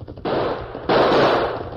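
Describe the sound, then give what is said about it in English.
Loud gunfire erupts in two sharp bursts, the second one harder, each trailing into a dense, crackling rattle of shots with no voices heard. “Shoot it out. Shoot him. Missed him. Fire again.”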